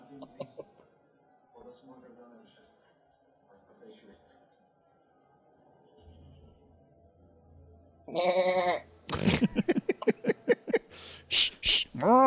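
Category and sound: animal, goats bleating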